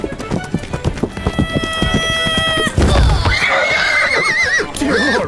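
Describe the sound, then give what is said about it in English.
Hooves clip-clop in a quick rhythm, then a horse named Plato lets out a loud, shrill whinny with a wavering pitch that carries to the end. “You ran directly in front of my horse!”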